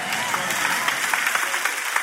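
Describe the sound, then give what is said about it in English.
A crowd applauds during a sermon in a dense, steady patter of many hands, with sharper individual claps popping out here and there, holding at a fairly even level throughout. “Oh, the applause died down by 73%.”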